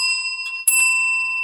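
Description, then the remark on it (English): A small bell is dinged once to claim bonus points in a word game, producing a bright, clear ring with sharp metallic overtones that sustains evenly and fades slowly. It is fairly loud, with no one talking. “So, for reasons that are getting increasingly too obtuse to explain, if either of us says the word the thing or things or something like that, then the other person may ding their bell and receive 9 bonus points.”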